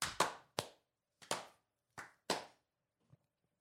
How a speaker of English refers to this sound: What was the clappy round clap? Round of applause. It was to reset our brains.